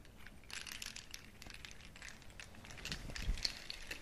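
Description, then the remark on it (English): Sea shells shaken gently, a steady stream of dry, brittle clicks and rattles, faint and continuous with slight swells in loudness, no voices. “These are my sea shells.”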